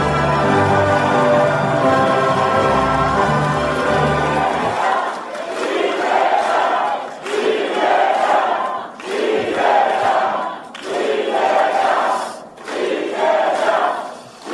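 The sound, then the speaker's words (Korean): A large crowd of Democratic Party members and supporters in Busan and South Gyeongsang roars loudly over booming music as party leader Lee Jae-myung is brought onto the stage, then breaks into rhythmic cheering, with voices swelling in regular bursts about every two seconds, like a chanted slogan. “네, 여러분 다시 한번 큰 박수 부탁드립니다.”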